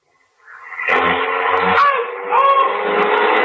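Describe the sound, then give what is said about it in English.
A car engine starts up and roars as it accelerates away, bumping into a man as it goes, loud, the revving swelling and surging for a few seconds with no voices. “when you started the car, you bumped into him.”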